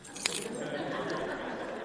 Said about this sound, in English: And when I do need to leave, I have my car keys right here.